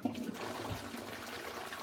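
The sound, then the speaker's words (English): A toilet flushes, a steady rushing gush of water with gurgling undertones that fills the whole short clip with no voices. “I'm just going to get our side host here to introduce you, right, Mr. Flush.”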